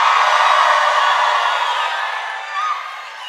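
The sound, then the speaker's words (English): A crowd screams and cheers in a sustained, loud roar that fills the space, then gradually eases off a little toward the end, with no clear speech on top. “Somebody scream!”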